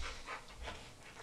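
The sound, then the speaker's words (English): A dog pants and whimpers in quick, rhythmic breathy bursts, fairly soft, with no one talking over it. “he just wants us to play with him. Max. Leave it. Little boy.”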